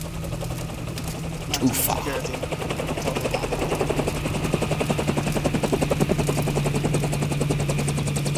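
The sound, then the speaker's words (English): A helicopter's rotor beats in a rapid, steady chop over a droning engine whine, loud, swelling slightly louder as it approaches. “Chopper's here, sir.”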